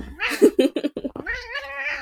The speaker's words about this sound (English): Oh, it's fine. That cat can meow as much as he wants. He's a cute boy.